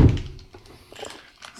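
A door shuts with one dull, heavy thunk at the start, followed by faint rustling and low background noise with no talking.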